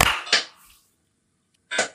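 Three sharp hand claps, the first two in quick succession, then a short silence before a third, each a bright, snappy burst with a brief ring. No one speaks.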